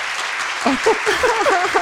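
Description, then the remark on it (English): A short burst of dense clapping from a crowd, steady and fairly loud, with voices calling out faintly over it partway through. “Tom just made your day and gave you the applause that you deserve”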